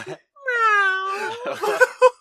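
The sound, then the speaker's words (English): A person's voice imitates a cat with one drawn-out, rising-then-falling meow, clear, followed by brief breathy laughter or talk. “I mean, sometimes I meow a lot.”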